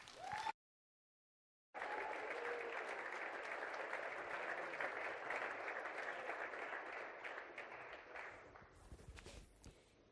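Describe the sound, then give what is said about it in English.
A campus audience breaks into sustained applause for a professor being introduced, a dense wash of clapping that swells steadily for several seconds before thinning out near the end, with a brief silence just before it begins. “So you'll want to give him a big round of applause.”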